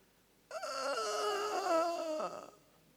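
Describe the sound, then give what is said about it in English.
A person imitates a dog's whining cry: one sustained, wavering, high-pitched whine lasting about two seconds, fairly loud, then trailing off into quiet. “They call it a cry out of a dog. It don't bark.”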